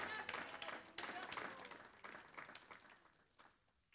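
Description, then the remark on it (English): A crowd claps hands in a dense, steady burst of applause, with voices calling out underneath, as an audience answers a preacher's call to clap during a sermon about the kingdom of God; the clapping thins and fades away over the last second. “Man, somebody ought to just clap your hands.”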